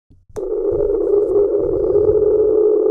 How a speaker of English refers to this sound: there's one that I really like that is called Train. This was recorded on March 5th, 1997, and it sounds like a train whistle, basically.